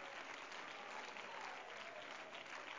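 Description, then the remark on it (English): An audience claps together to give praise to God in a dense, steady burst of applause that fills the space evenly for a few seconds, with no voices standing out. “Come on, let's clap our hands and give praise to Him right now.”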